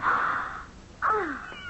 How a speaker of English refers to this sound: A kitten from Persia. Oh, you sweet darling. Look how white and fluffy he is. A kitten.